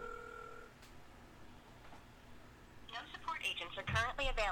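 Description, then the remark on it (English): A brief electronic phone ring tone sounds through a speakerphone during a call to the Fleshlight company, followed by a pause and then a thin, tinny voice talking over the line. “So, I am calling the Fleshlight Company to see if they could do some viral marketing.”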